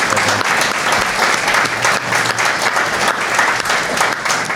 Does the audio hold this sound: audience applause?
yes